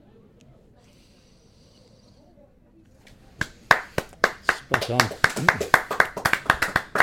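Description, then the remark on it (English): Applause breaks out after a brief spoken remark, a loud run of sharp claps in a steady, rhythmic beat that continues to the end. “I feel like the applause has slightly prejudiced the answer.”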